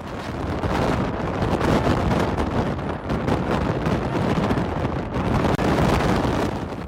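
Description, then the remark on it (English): Loud, constant strong wind roars and buffets a microphone outdoors in Iceland, on leaving Wonders of Iceland, a dense rumbling blast with gusty flutter that barely lets up for the whole stretch, with no voices audible. “You can't hear anything because the winds are so strong.”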